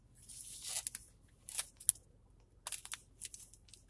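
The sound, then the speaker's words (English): Crinkly plastic rustling and tearing in several irregular bursts with brief pauses as a plastic bag around a game is pulled open and handled. No one speaks. “I guess I'll crack open this last one.”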